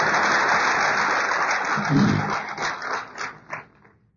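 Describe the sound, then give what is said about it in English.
A crowd bursts into dense, sustained applause for a couple's 46th wedding anniversary, many hands clapping at once, then the clapping thins into scattered individual claps and fades out after about four seconds. “I agree. I would clap too.”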